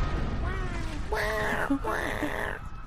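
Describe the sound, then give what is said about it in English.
A person voices two drawn-out cat meows in quick succession, fairly loud, mimicking a cat over a low background hum, with a fainter meow-like sound just before. “Meow.”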